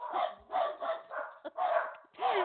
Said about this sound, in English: Yes, it's take your dog to work day here.